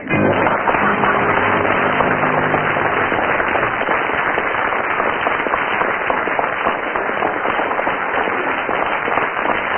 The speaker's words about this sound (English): Well, with 7 seconds of spontaneous applause from the audience there, Tim and Willie have scored quite a lot of points.